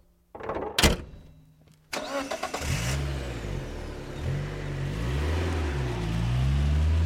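A car engine cranks briefly and catches, then settles into a steady, rumbling idle, after a short thud. No one speaks.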